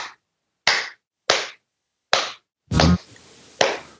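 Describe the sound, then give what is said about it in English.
A steady series of sharp, slapping thumps from chest compressions during CPR, about six loud impacts in an even rhythm, one slightly heavier and noisier, with no talking. “Okay, so I am putting my phone on speaker, and I am going ahead and start compressions.”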